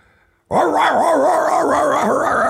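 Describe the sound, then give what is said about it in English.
After a brief quiet moment, a drug-sniffing dog on a plane breaks into loud, continuous barking and yowling, its pitch wavering up and down for about two seconds with no talking. “So they put drug dogs on the plane. Well, of course, I smoke pot on the plane, so the dogs are”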